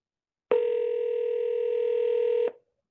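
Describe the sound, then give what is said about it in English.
A single steady telephone ring tone on a call to an MCI number, loud, holding for about two seconds before cutting off abruptly, with no voices present. “It's just ringing through as if that happens.”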